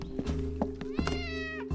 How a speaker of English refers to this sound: I know that meow. That's Catnip. He was close.